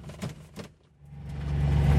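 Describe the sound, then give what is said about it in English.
A car engine starts low and builds steadily louder over a couple of seconds, a rumbling drone that swells as the vehicle pulls away and drives off in the rain toward pumpkin and maize fields, with a couple of brief clunks near the start. “So let's drive up there and have a look.”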